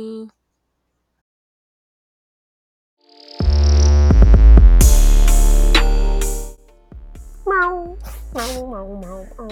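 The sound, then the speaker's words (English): People imitate cat meows: a loud, noisy vocal burst gives way to several short, wavering meow-like calls with rising and falling pitch, one after another. “Well, thanks, y'all, for fucking with us again while we sit here and just talk shit and laugh and make cat noises.”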